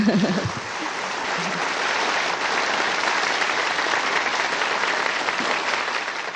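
A crowd applauds warmly for the fellow practitioners from Pingtung, with dense steady clapping sustained for several seconds at an even loudness. A brief voice fragment can be heard at the very start.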